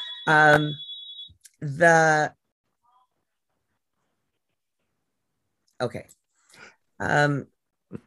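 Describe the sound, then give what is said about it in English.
The speaker's husband's phone rings, muffled and moderately loud, in a few separated bursts with a long silent gap between them. “I think that that's my husband's phone and I'm hoping he'll answer it.”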